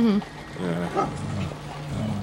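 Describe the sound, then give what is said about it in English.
A large dog, an Irish wolfhound, gives deep, drawn-out barks and grumbling growls, several low vocal bursts running into one another over about two seconds. “No, he's an Irish wolfhound, so he's like, he's pretty big.”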